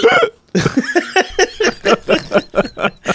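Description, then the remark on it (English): A rapid, rhythmic run of about a dozen voiced hiccups, fairly loud, each a short gulping burst following a brief opening hiccup and pause, like a drunken fit. “That's the drunken hiccups.”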